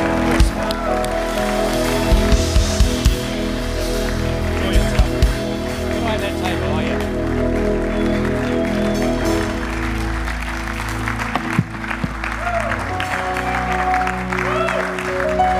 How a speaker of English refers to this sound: You can come up here so everyone can see you. Can you stand up and give them a big cheer? Because these really are two heroes in the faith.